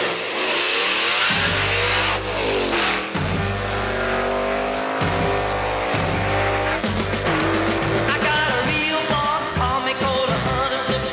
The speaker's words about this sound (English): They seem to go in on those motorcycle sound effects. You know, there's lots of vroom, vroom, vroom going on.